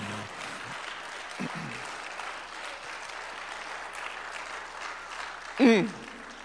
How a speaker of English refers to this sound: I need someone to give the Lord a hand clap of praise right now.